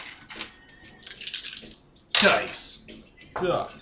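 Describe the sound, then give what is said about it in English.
Dice rolled for an intelligence and streetwise check, which fails, rattle and clatter across a hard surface in a few quick bursts of sharp, bright clicks, with a louder tumble midway and another short roll at the end. “Dice.”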